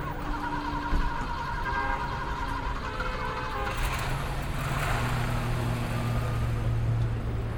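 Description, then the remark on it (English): A car engine rumbles steadily, then its pitch shifts as the vehicle pulls away and drives off, a continuous, fairly loud motor drone with no voices. “You want your car? Oh, never mind. I'll just take this one.”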